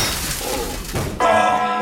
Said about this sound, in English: The crack along the ceiling right above the rotund man's head, and the air vent comes down and crashes right upon it!